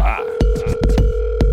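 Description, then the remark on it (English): A phone rings with a steady electronic tone, fairly loud, broken by several sharp clicks and thumps. No one speaks. “You better answer your phone.”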